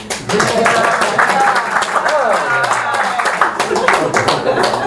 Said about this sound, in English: Yeah, more applause.